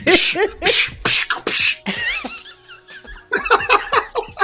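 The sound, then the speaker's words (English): A voice imitates old 1970s kung fu movie fight noises: a run of loud, sharp, breathy bursts, then a thin wavering whistle-like tone, then quicker choppy yelps, with a laughing edge throughout. “Why you use the old 70s kung fu noises?”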